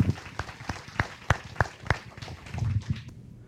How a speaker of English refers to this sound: Let's have one more round of applause for our speakers.